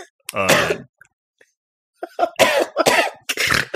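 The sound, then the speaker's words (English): A single harsh, voiced cough, then a pause before a rapid run of three or four rough, breathy coughs in close succession, all fairly loud with no talking. “Just comfort him, get him to stop coughing, get his cough to ease.”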